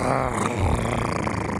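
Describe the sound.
A voice imitates a snake with one sustained, raspy hiss lasting about a second and a half, fairly loud, with a slightly growly edge and no words.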